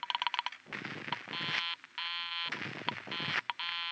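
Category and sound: signal or alarm, telephone busy signal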